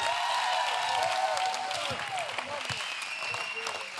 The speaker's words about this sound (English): Give the Lord a clap and a shout like you got juice.